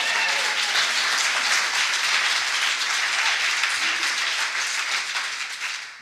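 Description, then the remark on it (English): A church audience gives the Lord a hand clap, breaking into sustained applause: many hands clapping in a dense, steady crackle that holds strong for several seconds before beginning to fade at the end. “Come on, you can give the Lord a hand clap.”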